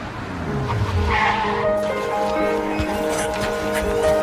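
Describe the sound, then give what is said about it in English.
A car engine revs as it hurriedly races up to an airport curb, followed by a sustained tire squeal as it skids to a halt, loud. “We see a car hurriedly racing up to an airport curb”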